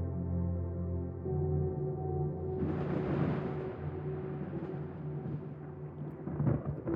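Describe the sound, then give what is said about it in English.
A low, rolling rumble of distant thunder swells in a few seconds in and slowly fades, layered over a steady, sustained musical drone. No one speaks. “You hear the distant rumble of thunder.”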